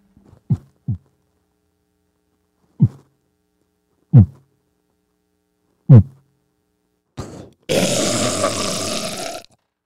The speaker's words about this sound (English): My heartbeat is 48. 48 beats a minute.